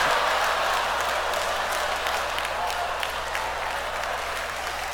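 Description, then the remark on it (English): An audience applauds steadily for about five seconds, a dense, even wash of many hands clapping at a fairly loud, constant level, with no voices standing out. “I'm not trying to embarrass you, dude, but you and everyone that clapped earlier, you're the fucking problem, okay?”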